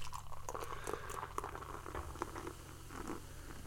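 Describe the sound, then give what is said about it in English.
A steady pour of beer into a glass, with crackling fizz and small popping bubbles throughout, and no one talking. “It's actually someone peeing and not a beer being poured.”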